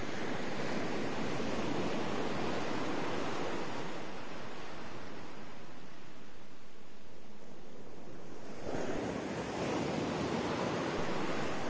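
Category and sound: nature, ocean waves and surf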